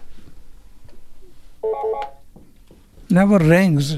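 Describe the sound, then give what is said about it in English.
A short burst of electronic telephone ringing, steady and fairly clear for about half a second, over faint background murmur, followed by a loud, wavering voice; the phone, which never rings, started ringing for no reason. “It just started ringing for no reason.”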